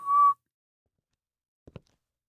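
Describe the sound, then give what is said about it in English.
A short, steady inhaled whistle on a single pitch, lasting a fraction of a second, followed after a pause by two quick soft clicks close together. “When Carrie stepped to the kitchen serving as a break room, Mule ticked her head 3 times in rapid succession and reverse whistled.”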